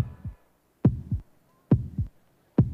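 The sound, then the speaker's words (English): A deep, booming heartbeat pounds in steady lub-dub pairs, three doubled thumps spaced evenly and slowly, loud and close with a heavy low-end throb and silence between beats. “he kind of gets into this like heartbeat mode, and we see the like line of sight of the rifle, and it's almost like the movie American Sniper.”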